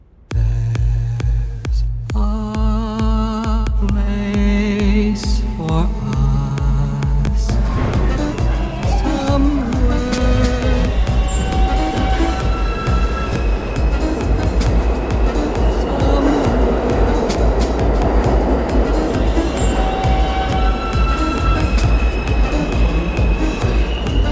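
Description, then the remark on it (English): A subway train's traction motor inverter, which converts an old power waveform for a new efficient motor, whines in rising, stepped musical tones over a loud rumbling hum of the moving train, continuous, with wheel noise building underneath. “the noise itself is created by something that is reconciling an old system of wave into a new motor to be efficient.”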